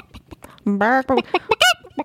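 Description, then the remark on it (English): A person pecks at a microphone with their nose like a bird, making soft tapping knocks, followed by a voice imitating a chicken with short, rising squawks and clucks that sound loud. “We could talk about how I'm, like, pecking at the microphone with my nose like a bird.”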